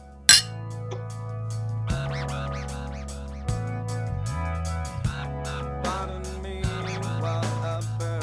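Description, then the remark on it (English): Glasses clink together once in a toast, bright, right at the start. Steady music with a droning bass line and rhythmic accents follows and carries on to the end. “Grab yourself a beer and cheers.”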